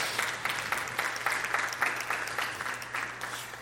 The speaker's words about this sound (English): Everybody give Philip and Sean a round of applause.